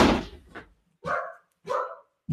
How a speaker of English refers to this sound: I think I have a barking dog here. I'm going to shut my office door real quick.